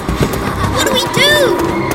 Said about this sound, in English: Hear that? Sounds like a horse. Where there's a horse, there's a, you know, horseman. It's getting closer!